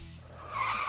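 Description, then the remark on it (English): A short tire screech sound effect used as a segment intro rises in pitch and loudness, a sharp skidding squeal over a low engine rumble, brief. “Pump the Brakes! The most elegant of all intros to a segment.”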